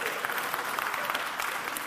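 Steady applause from a live audience, many hands clapping in a dense, continuous patter at moderate loudness, with no voices standing out above it.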